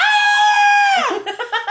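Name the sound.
human scream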